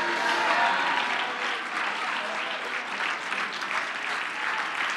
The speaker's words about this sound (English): Can somebody stand to your feet? Can somebody clap your hands? Can you shout hallelujah?